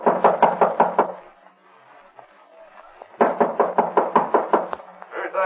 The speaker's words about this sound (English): Open the door. I heard it. Open up. All right, don't break the door down.